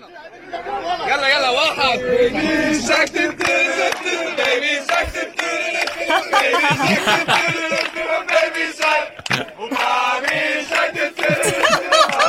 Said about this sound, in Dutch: Wat je hoorde was een stel demonstranten, Libanese demonstranten in Beirut.